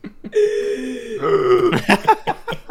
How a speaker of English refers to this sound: Well, as you take that big gasping breath